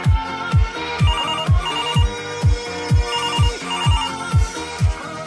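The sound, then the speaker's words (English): A loud, bright ringtone-style jingle plays alone as a cue for radio listeners to phone in. It is a catchy melodic phone ring riding over steady, punchy bass thumps that land roughly twice a second for about five seconds. “Yep, that's your little cue. No pun intended. Oh. Get your phone out. Call me.”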